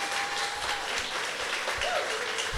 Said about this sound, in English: Go ahead, you can applaud. That's fine.